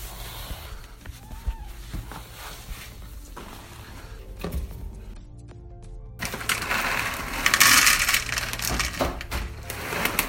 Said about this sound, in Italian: Questo è il rumore delle crocchette.